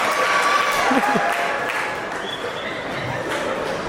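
applause

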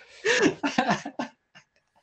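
nose blowing

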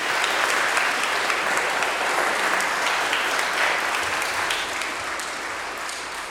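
audience applauding

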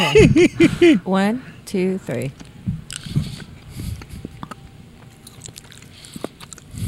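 chewing jelly beans

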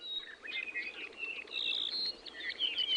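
birdsong

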